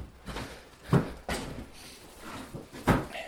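A stiff door is shoved open in a few hard, uneven pushes, with loud knocks and thuds around one and three seconds, without talking.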